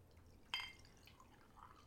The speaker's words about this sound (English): You don't want to talk over your pouring.